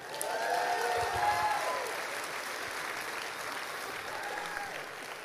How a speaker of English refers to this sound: Y'all give him a big hand.